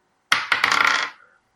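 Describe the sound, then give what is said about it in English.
Dice are rolled to pick the week's entry and clatter across a hard surface: a few sharp knocks followed by a quick run of rattling taps that settles within about a second, fairly loud, with no talking. “We'll roll the dice for our entry of this week.”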